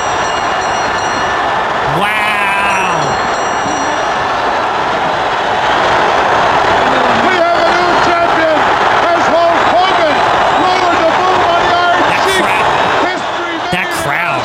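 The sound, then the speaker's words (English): A huge Madison Square Garden wrestling crowd roars as Hulk Hogan wins the world championship, a steady, loud wash of noise, with a brief high whistle-like tone early on and swells of chanting voices rising through the middle. “Look how they fade the crowd in.”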